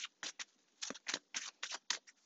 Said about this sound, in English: I haven't necessarily talked about any of these upcoming cards right now. I'm just shuffling and trying to see what else comes out